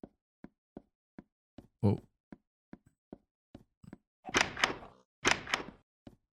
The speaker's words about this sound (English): Loud ass doors.